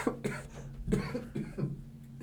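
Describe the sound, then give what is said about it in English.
A rapid coughing fit: several harsh, throaty coughs in quick succession, loud and uneven, with no talking. “Just got attacked by coughs.”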